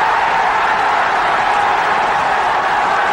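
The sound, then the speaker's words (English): A football crowd roars after a goal in the 89th minute, a loud, dense, unbroken wall of cheering and shouting that holds steady for the whole few seconds with no single voice standing out. “And the crowd going absolutely mad.”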